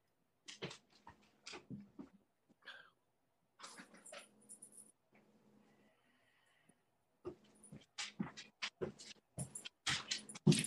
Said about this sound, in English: Oh my gosh, my dog, hold on 1 second. I'm just gonna, my dog is like crying.